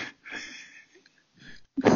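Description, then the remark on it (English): A sneeze through a throat stoma of a former smoker: breathy, hissing bursts of air, then a sudden forceful blast at the end, with no voice. “My tip to you is remember, cover your stoma when you sneeze.”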